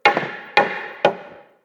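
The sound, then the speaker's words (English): Three sharp hammer blows strike a wall at a steady, unhurried pace as someone works to knock the wall down, each a loud impact that rings briefly before the next hit. No one speaks. “Something about a hammer, but it makes you feel like a man.”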